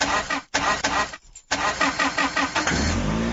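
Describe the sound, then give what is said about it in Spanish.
A woman's everyday car engine cranks with a rapid, rhythmic grinding that stalls and retries several times, then finally catches and settles into a steady running rumble; fairly loud, no voices. “Ay, necesitan revisarlo. Ella se refiere a su carro que la transporta todos los días.”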